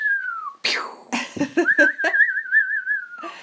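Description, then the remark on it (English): A person whistles an imitation of New Year fireworks: a falling tone, then bursts of breathy laughter, then a long, warbling whistle that finally slides downward. Fairly loud. “Fireworks! Oh, I was going to whistle them, but I'm laughing now.”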